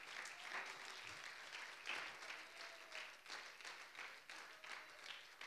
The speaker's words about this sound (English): ¿Por qué no le da un aplauso al Señor? Why don't you give a clap offering to the Lord?